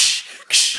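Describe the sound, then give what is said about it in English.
Two quick, hissy whooshing bursts in a row, fairly loud: people making clash noises with their mouths as a toothbrush and a candy cane hit each other in a short battle, with a brief dip in between and no talking. “Toothpick, the toothbrush and the candy cane hit, and then they make the clash noises with their mouths as well.”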